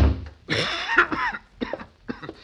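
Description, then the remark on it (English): A harsh, rasping cough erupts from someone with a cold, one long hacking fit followed by two shorter coughs, with no one speaking. “Hey, you got an awful bad cough there,”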